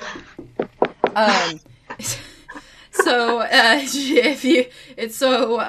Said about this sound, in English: Oh, fuck, I need to knock on wood now.